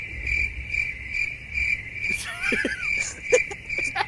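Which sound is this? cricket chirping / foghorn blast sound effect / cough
cricket chirping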